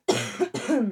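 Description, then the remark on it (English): Two harsh, chesty coughs in quick succession, fairly loud, the second slightly longer and raspier, with no talking around them. “I should have taken cough medicine before the show.”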